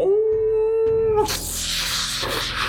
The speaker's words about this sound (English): As the tentacles start forming into a wolf's head and it howls.